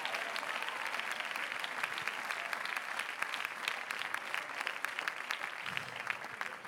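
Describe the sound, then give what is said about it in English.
An audience claps their hands in sustained, dense applause at a preacher's call during a sermon, steady and fairly loud for several seconds, with no voices standing out. “Oh, somebody clap your hands if you believe that.”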